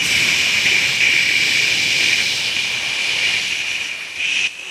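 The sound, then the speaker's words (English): A voice imitates a guy holding down the button of his Axe body spray, holding one steady, bright hiss for nearly five seconds before it wavers and cuts off. No one speaks. “But I shit you not, I watch this guy hold down the button of his Axe body spray like this and went...”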